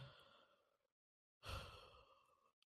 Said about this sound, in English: I'm so sorry, guys. I keep yawning.